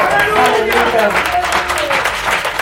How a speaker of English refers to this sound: We just bless God. Can we just clap our hands for Jesus?